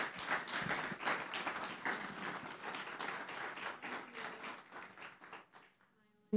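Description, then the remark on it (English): A church audience applauds at Christmas, a dense wash of many hands clapping at a steady, fairly loud level for about six seconds before tapering off abruptly at the end. “So we just want to say Merry Christmas and give them a round of applause real quick.”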